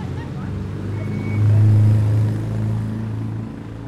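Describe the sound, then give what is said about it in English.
1950s Jaguar racing cars drive past, engines droning low and steady, swelling loudly as they pass and slither a little through a 90-degree turn, then easing off, with a general outdoor rumble underneath. “A lot of Jaguars. saloon cars from the 1950s, racing sports cars.”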